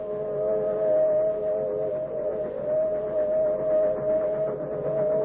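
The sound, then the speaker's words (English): A southbound freight train's whistle sounds in the distance late at night at a railroad cut in the hill country of a New England state: one long, steady, mid-pitched chord of blended tones held unbroken for several seconds over a faint background rumble, with no voices. “It is late at night, and the whistle of a southbound freight is heard in the distance.”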